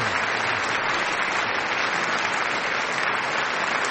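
A steady burst of applause played as a sound effect, from a sizable crowd: dense and continuous clapping that holds at an even, fairly loud level for a few seconds with no voices over it.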